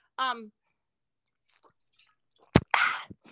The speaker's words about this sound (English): I honestly heard that swig.